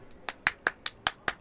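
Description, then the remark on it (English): Someone claps their hands in a quick, steady rhythm, about seven crisp, bright claps evenly spaced, with no voices in between. “Why are you clapping?”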